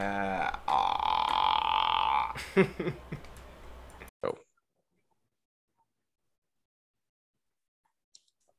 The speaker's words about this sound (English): Oh my God, that's the biggest gulp.